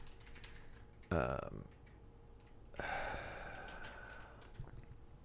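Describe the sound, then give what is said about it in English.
Quick, light clicks of typing on a computer keyboard, irregular, mixed with a couple of louder rustling bursts and faint vocal sounds; someone is typing to pull up a Bible reading from the book of James. “I have a Bible sitting right here, but I'm typing on my computer like a freaking monkey.”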